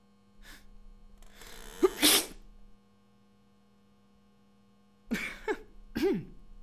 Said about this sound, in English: You know, I love the feeling of sneezing. Recently, I was thinking about how sneezing feels kind of like an orgasm.